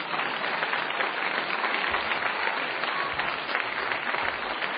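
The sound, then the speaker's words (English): Sustained audience applause welcoming debaters onto a stage at a debate being broadcast on radio, a dense, steady wash of many hands clapping at an even loudness for the whole stretch, with no voices standing out. “We're very glad that you're here, and in a couple of minutes, actually right now, we'll be bringing our debaters out on stage, if we can welcome them with a round of applause.”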